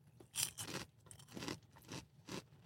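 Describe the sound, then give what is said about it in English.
Dry crunching of gingerbread cinnamon cereal, similar to Cinnamon Toast Crunch, being chewed dry, a series of about five or six crisp bursts in an uneven chewing rhythm, with no talking. “That said, it's very, very edible. Very crunchy, as you can hear.”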